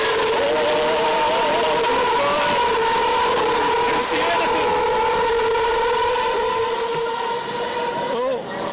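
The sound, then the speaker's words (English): A loud, continuous roar of Formula One race car engines at the start of a race at Silverstone, their high-pitched whine rising and shifting as a pack of cars accelerates for the whole stretch. “My goodness, after our talks from the Detroit Grand Prix about the sounds that Indy cars make and so on, it is nice to just hear the roar of F1 engines again.”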